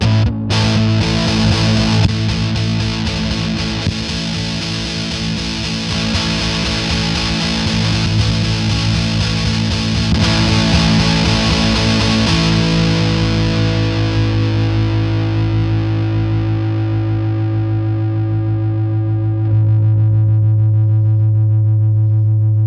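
An electric guitar on the bridge pickup, played through a JHS muff-style fuzz pedal with tone and volume at noon and gain at 3 o'clock, rings out in one thick, saturated sustained A for about twenty seconds, loud and buzzy, its bright top end slowly fading while the low drone holds.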